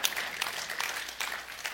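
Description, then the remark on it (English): A crowd applauds steadily, dense overlapping claps forming a continuous patter for a couple of seconds, heard at moderate level with no one speaking over it. “Clapping's great.”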